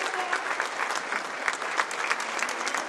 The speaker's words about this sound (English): Let's give the Lord that hand clap of praise. Amen.